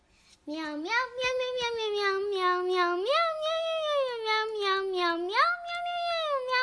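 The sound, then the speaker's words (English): A high, child-like voice imitates a cat for a 2017 National Federation of the Blind holiday greeting, meowing about eleven times in a quick, continuous run with rising and falling pitch, fairly loud. “Merry Christmas from the Riccobono's cat.”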